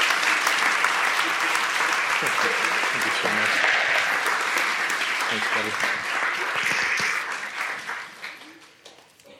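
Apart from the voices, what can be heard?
audience round of applause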